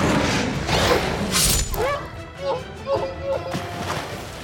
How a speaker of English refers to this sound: The hellhound stumbled past, crashing into a nearby riverbank.